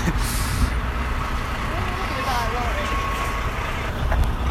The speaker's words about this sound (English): The film Wild makes it look very quiet, but there's a car toll booth here and there's lorries going across.